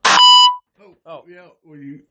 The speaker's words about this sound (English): Well, I'll give you one. What's the beep?